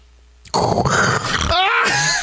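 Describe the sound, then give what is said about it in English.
A person imitates a pig as a snore, making a loud, rough snorting grunt that runs about two seconds and ends in a wavering, squealy groan. “It's got to be a snore, not a breathe. That's a piggy snort.”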